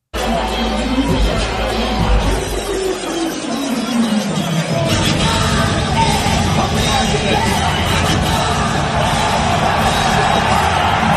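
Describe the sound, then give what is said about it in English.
A large arena crowd roars continuously, cheering and yelling in a dense, loud wall of noise with scattered whoops, sustained for the whole stretch without letting up, as Donald Trump makes his entrance with the Secret Service. “Listen to the crowd right there. They know who's coming.”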